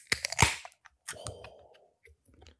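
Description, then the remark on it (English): A can of pilsner beer is cracked open: a few sharp metallic clicks and a pop, then a brief hissing fizz that fades out within about a second, followed by faint small clicks. “Should I open it with a fizz?”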